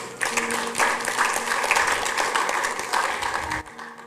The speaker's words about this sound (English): Let's clap for her.